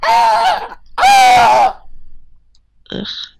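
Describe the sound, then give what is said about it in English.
A creature lets out two loud, harsh, crowing cries with a rough, wavering pitch, like a demonic rooster, followed after a pause by a short, shrill squawk, as the creatures launch themselves and charge at the listener in the near-silent night. “That sounds like a demonic rooster.”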